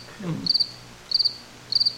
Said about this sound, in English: go ahead and hit the crickets real quick. Okay. There we go.